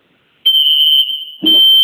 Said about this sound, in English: They're playing with the alarm system.